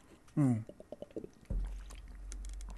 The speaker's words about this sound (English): Excuse me while I have some beautiful water.